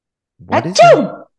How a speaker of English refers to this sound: The suitcase sneezes.